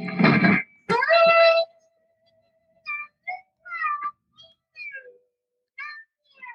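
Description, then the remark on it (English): Two harsh, noisy bursts give way to a distorted electric guitar note, played with the fingernail and side of the finger through an amp with heavy distortion and drive, that sustains as a thin, steady tone, then breaks into short, warbling, choppy fragments as the Zoom call cuts it in and out. “And if you have enough distortion and drive on the amp, it'll just keep on going.”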